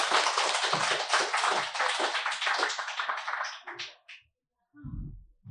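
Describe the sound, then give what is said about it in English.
A crowd applauds author Bridget Davis, whose novel set in the mid-1980s was just introduced, with dense, sustained clapping for about four seconds, then the clapping thins out and stops, followed by a brief low thump. “Let's give a big round of applause for Bridget Davis.”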